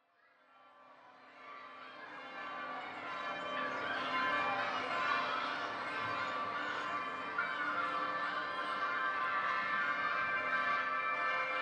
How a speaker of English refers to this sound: Christmas bells, wedding bells, fire bells and pyre bells, bells of silver and gold. Hear the bells tolling and rolling in this clamorous rendition of the bells.